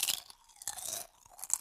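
Crisp crunching of chips from a big bag in a maloka, in about three bursts of chewing, each a dry crackly crunch separated by brief pauses, with no voices.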